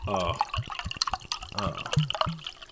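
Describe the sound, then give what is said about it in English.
Carbonated kombucha is poured into a glass by a microphone, with bubbly dripping and splashing sounds and brief tonal gurgles as it fills; a voice murmurs faintly in the background. “And so we've got good carbonation in this. Here, let me pour it by the mic so people can”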